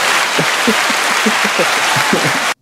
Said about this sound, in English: You got to hit the round of applause button.